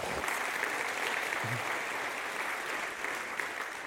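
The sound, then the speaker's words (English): An audience applauds steadily, a dense wash of clapping hands that holds at a constant loudness from start to finish, with a brief low murmur partway through. “it's worth a round of applause.”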